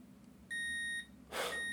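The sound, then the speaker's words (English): A single clear electronic beep from a tender notification alert, a steady tone with bright harmonics lasting about half a second, followed by a brief burst of noise as another tone begins. “Another tender notification.”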